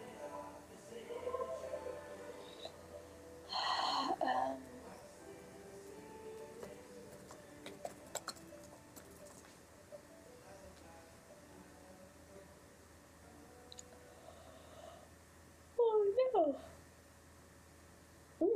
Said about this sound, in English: Sorry, I'm not that sleepy. That was a big yawn.